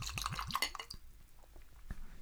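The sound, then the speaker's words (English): A drink is poured into a glass over ice cubes from a fridge ice maker, with a quickly rising, gurgling pitch while the ice clinks sharply, then the pour stops and a few faint clinks and drips follow. “I'm going to also drink it on the rocks.”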